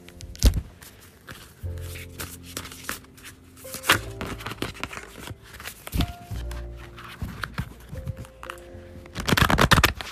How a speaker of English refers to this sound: So I'm going to do my cards today and see what comes out for me. And it's, my cards is always right. It's just, wow. So, just bear with me, y'all. About to shuffle my cards.